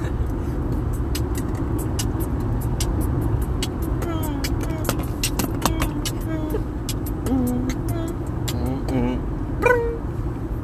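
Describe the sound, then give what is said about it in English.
Steady low rumble of a car's interior as it drives along the road, loud and continuous, with scattered clicks and faint voice fragments now and then. “Today, you might be hearing a little bit more background noise because we are driving in the car.”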